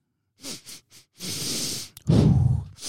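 Several quick, close sniffs in a row, followed by a longer drawn-in breath and then a louder, heavier exhale, with no talking.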